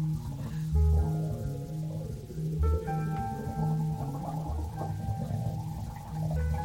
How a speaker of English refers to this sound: Or it could just be … playing some kind of musical water pipe. At this remove, who's to say, really?